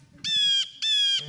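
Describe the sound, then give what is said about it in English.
Two loud, harsh bird squawks in quick succession at a nature resort, a sharp "kee kee" call with a bright, nasal tone, over faint low background noise. “That was more of a kee kee.”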